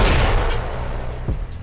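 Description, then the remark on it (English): Heavy knocking at a door, a series of dull thuds in a steady rhythm over a low, rumbling background, with no voices. “And welcome to the land of the thoughts, where that knock at the door means you're listening to Socially Thoughtful Bitches.”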